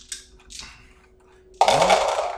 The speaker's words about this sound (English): I guess your dad rolls dice. I don't know how this works. So he, 3 successes. He rolls dice for your dad.